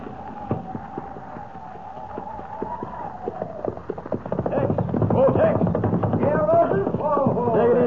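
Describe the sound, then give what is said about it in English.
Hooves of saddled horses clip-clop in an irregular patter that thickens and grows louder midway as several riders set off together, with a faint tonal murmur early on. “Got your horses all saddled and ready.”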